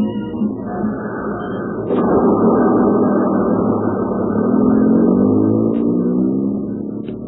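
A bus engine idles with a steady, moderately loud rumble that swells slightly midway and holds, with a few faint clicks on top and no voices.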